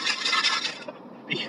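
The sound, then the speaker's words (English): Coins rattle inside a small metal Altoids mint tin in a vehicle, a dense, raspy shaking for most of a second, then a short pause and one more brief jangle, fairly loud. “There's something rattling in your. It's this can of. Oh, it's the Altoids can? With coins in it?”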